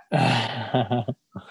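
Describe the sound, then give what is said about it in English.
A dog barks loudly: one long, rough, growling bark followed by a couple of quick, clipped barks, then a brief pause and a softer final yelp. “Why is he barking? I don't know. They just bark for no reason.”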